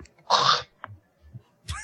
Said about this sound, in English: Let me clear my throat.